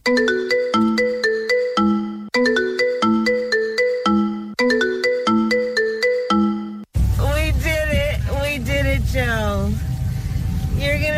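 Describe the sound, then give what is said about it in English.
A phone rings with a bright, melodic ringtone that loops three times, loudly, before it cuts off and a person starts speaking. “It all started with a phone call.”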